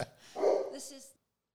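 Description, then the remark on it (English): A dog, Petey, lets out a short, loud bark or two at the postman, the sound cutting off abruptly into silence. “I think Petey might have seen the postman.”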